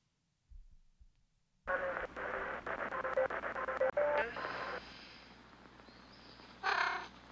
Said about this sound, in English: Hello, cat. You're getting familiar, aren't you? I don't have any food. Sorry. I could give you some egg. At least we know that came from the chickens. Would you like a bit of egg?